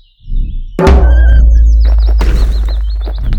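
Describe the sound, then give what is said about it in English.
A loud, deep drum bang booms out and rings on, followed by a second heavy hit, while small birds chirp and tweet in the background. “Don't forget to bang that drum.”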